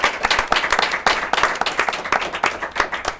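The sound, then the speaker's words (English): A crowd applauds panelists steadily, dense overlapping claps forming a loud, bright wash of sound with a constant flickering rhythm and no voices. “Let's give our panelists a big round of applause, please.”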